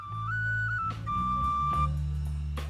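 A bright penny whistle plays a short, sustained melody that steps between a few high notes, loud and up front over a full band with bass and occasional drum hits.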